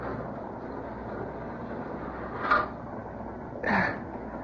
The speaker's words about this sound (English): Boxcar, open door. I made it just in time. Better close the door.